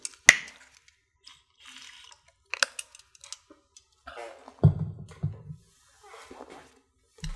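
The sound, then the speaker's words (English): Someone quietly sips water, with small clicks and bottle or glass handling noises, a soft low gulp partway through, and no talking. “Excuse me as I take a little bit of water.”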